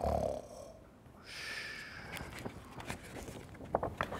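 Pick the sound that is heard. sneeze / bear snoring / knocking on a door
bear snoring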